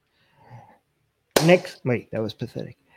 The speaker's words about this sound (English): Can I clap for the next news? Yes.